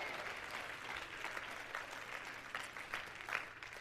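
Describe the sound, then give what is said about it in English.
An audience claps steadily for several seconds, a dense, continuous patter of many hands with small swells in loudness and no speech over it. “Somebody clap your hands and shout, yes!”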